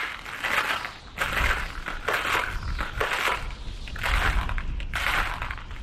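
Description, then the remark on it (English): Footsteps of a group marching through snow in howling winds, at a steady walking pace, about seven loud, gritty crunches in a row, each a short burst of packed snow compressing underfoot, with no voices. “So the troop marched that way, through the snow, the howling winds, and a creeping sense that they weren't alone out there.”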